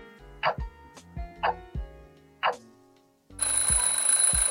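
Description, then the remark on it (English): A few short, rising electronic chirps with low thumps give way to a loud, harsh quiz buzzer tone that blares steadily for over a second at the end, with no talking. “Buzz? Hold on one second. Buzz? I'm double checking this.”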